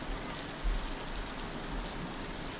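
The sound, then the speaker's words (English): Steady, dense rain of a summer storm hisses across a wide band at the back of a little yellow house, with a low rumbling undertone and a few slightly louder gusts; no voices or other sounds. “Under a patio table at the back of a little yellow house, a chocolate lab named Thor cowers in a summer storm.”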